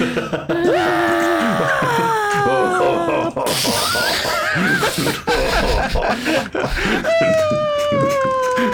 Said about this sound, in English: Wilhelm scream as he goes.